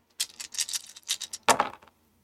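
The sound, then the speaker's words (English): Seven dice rattle and clatter across a hard surface in a quick burst of sharp clicks, ending with a louder tumble before settling, with no voices. “So I have seven dice.”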